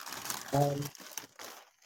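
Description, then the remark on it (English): Paper crinkling and shuffling in short, scratchy bursts, with a brief snatch of a voice partway through. “You want to stop shuffling the paper?”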